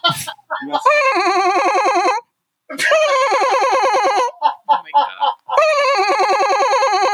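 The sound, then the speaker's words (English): A voice imitates the ringtone of an old brick-style wireless home phone, not a cell phone: three loud, buzzy, warbling bursts with a shrill trilling quality, separated by short pauses. “The ones that would make a ringtone similar to this.”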